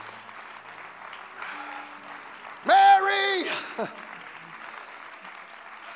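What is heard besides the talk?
audience clapping hands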